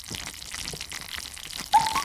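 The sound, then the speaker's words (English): Cheese fondue boiling in a pot, a steady wet crackle of small bubbles bursting, with a sharper, louder pop and brief hiss near the end. No voices. “Is boiling fondue.”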